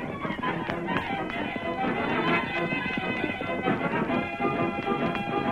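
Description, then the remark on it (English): Horses gallop with a fast, steady drumming of hoofbeats, loud, running continuously under a full, dramatic musical backing for several seconds. The Lone Ranger and Tonto ride their horses Silver and Scout toward a fort. “The Lone Ranger and Tonto finally arrived at the fort and brought their horses to a stop.”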